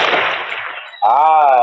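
A loud, rumbling burst of video game gunfire that trails off over about a second, then cuts to a steady, bright harmonic tone that holds to the end.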